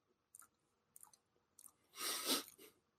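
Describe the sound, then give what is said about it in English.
Chewing of food: three short, crisp crunching bites spaced about half a second apart, then a louder, longer burst of wet mouth noise near the end, with no talking. “Chew slow, don't choke.”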